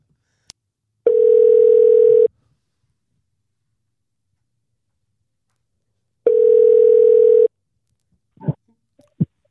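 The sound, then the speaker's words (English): A phone line rings through the receiver on a call to Kmart: two long, steady mid-pitched ring tones separated by a few seconds of silence, followed by a couple of soft clicks and thumps as the call connects. “Should we call Kmart and see what's popping? Let's just call him up and see what's popping.”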